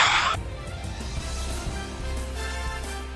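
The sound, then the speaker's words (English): A college basketball arena's final buzzer sounds, ending Gonzaga's 92-69 win over visiting BYU. It is a loud, sustained electronic tone that holds for a few seconds over the steady roar of a cheering crowd. “There is the buzzer, and that will do it.”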